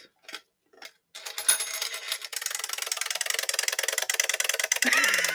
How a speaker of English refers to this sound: That's the timer. Okay. It's right. So it's like just a regular wind up. It's like a regular wind-up timer, which is good, actually